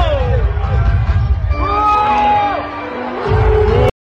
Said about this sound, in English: Did you hear the fans screaming no? The fans.